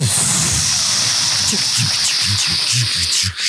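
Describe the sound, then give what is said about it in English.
A loud, steady hiss of steam from a steam train runs continuously throughout, with low muffled voices murmuring underneath. “And there's the steam going.”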